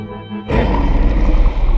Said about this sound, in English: They growl at us. Gruñen entre un gruñido como de una bestia, como un animal gruñe. It's the growl of a beast, an animal.